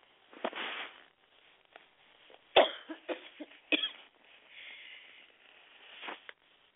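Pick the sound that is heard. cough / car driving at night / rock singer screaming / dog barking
cough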